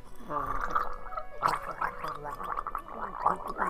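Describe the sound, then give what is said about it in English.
A voice imitates gargling for several seconds, a wet, bubbling, warbling vocal sound that rises and falls in steady pulses, mimicking water pouring out of a speaking character's mouth like a gargoyle. “And, like, as she starts speaking, water just pours out of her mouth like she's a gargoyle.”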